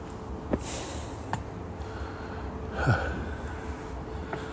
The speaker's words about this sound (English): You don't need to hear me puffing and panting unless that sort of thing interests you.